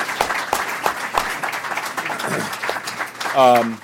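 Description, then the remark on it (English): A crowd applauds the panelists at the end of a panel discussion, a steady, dense wash of overlapping claps that fills the whole clip, with a brief spoken voice rising over it near the end. “Please, a round of applause for our panelists.”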